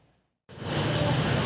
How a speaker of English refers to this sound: As traffic moves around construction pylons along Parliament and the Carlton streetcar suspended for 2 months now due to track replacement, Cabbage Town business owners say the ongoing construction is driving customers away.